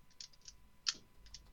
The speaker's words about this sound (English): So we normally have someone's pistol is clicking.